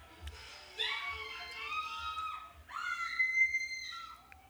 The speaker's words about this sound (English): All right, so anybody watching and only hearing the screams, this woman, what I can only assume is somewhere in Florida.